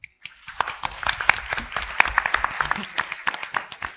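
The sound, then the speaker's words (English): An audience bursts into steady applause for a panel, many hands clapping in a dense, crackling patter that holds at an even level for several seconds. “I'd like you to give the panel a big round of applause.”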